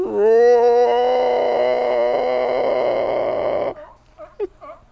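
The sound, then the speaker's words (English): On a California beach, a person imitates a sea lion with one long, loud, raspy bellow that starts slightly higher, wavers, and holds for almost four seconds before cutting off into a few faint breathy sounds. “Now they think I'm doing a sea lion impersonation.”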